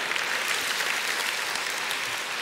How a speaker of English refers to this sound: Come on, let's give God a clap offering if you agree with me.